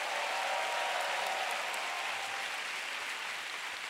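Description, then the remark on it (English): A crowd claps together to give God a big clap, in a steady, dense wash of applause that holds an even loudness for about four seconds, with no voices standing out. “Let's give God a big clap.”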